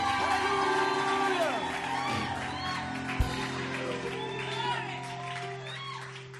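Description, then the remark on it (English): A crowd clapping and giving the Lord a shout of glory erupts in loud, continuous shouting and cheering, many voices overlapping in a sustained roar with scattered whoops. “Clap your hands and give the Lord a shout of glory.”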